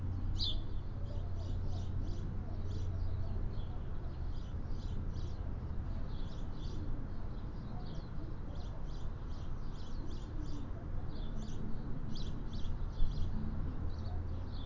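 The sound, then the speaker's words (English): Two small birds chirp in quick, high, repeated bursts throughout as they fly from tree to tree, a busy, steady twittering over a low, constant background rumble, with no talking. “These two little birds, they playing.”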